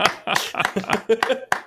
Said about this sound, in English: I accidentally elbowed my dongle, and then I said this when we came back, and then I elbowed the dongle again somehow. So I am very, very gingerly going to clap with one hand